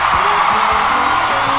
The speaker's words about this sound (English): And the crowd goes wild.